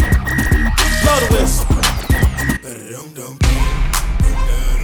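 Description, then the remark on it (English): A shrill, sustained whistle tone rings over a loud, thumping beat for a couple of seconds, then breaks off during a brief drop before the music crashes back in. “Blow the whistle. Blow the whistle. Blow the whistle.”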